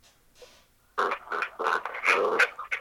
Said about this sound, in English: Yeah, there it is. There's the dog.